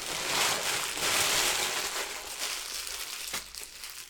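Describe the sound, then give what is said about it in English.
A cat crinkles a piece of tissue paper and a receipt: continuous crinkling and rustling of paper, dense and papery throughout, with a sharper crackle near the end as the rustling eases off slightly. No voices. “Yeah, of course we go to record and somehow she finds a piece of tissue paper and a receipt.”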